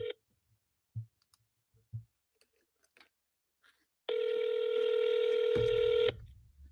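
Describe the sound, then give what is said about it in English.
A phone being dialed to call a business partner: a few short, evenly spaced button beeps, then a loud, steady electronic ringing tone that holds for about two seconds before cutting off. No voices. “So I don't know if I'm calling them or they calling me.”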